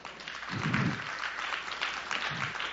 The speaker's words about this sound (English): Clap your hands on that.